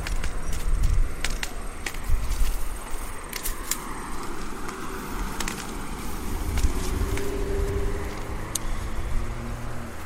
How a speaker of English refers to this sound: Okay, car just came around the corner. I seem to have great timing with that.